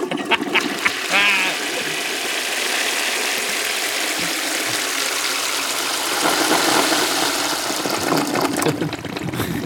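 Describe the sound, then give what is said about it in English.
A toilet flushes with a loud, steady rush of swirling water lasting several seconds, a brief gurgle near the start and a noisier surge toward the end, with no talking over it. “I'm going to pull an Alex on … here and just flush the rest of the album for me.”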